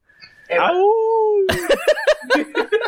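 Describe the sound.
A person lets out a short wolf-like howl, a sustained rising-and-falling tone lasting about a second, immediately followed by bursts of laughter and lively voices.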